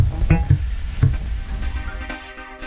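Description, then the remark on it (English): Food sizzles steadily in a hot, well-seasoned pan over a hot flame with a continuous crackling hiss, broken by a few sharp clinks and scrapes of a utensil against the metal. No one speaks. “A well-seasoned pan and a hot flame and utensils.”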